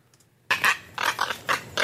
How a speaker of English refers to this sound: This is insane. What the fuck? It even sounds weird. Well, that's because the seagull's fucking dying.